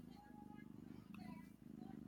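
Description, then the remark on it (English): A cat purrs in a low, steady, pulsing rumble that continues throughout, fairly quiet, with faint tonal background noise above it. “I can hear purring.”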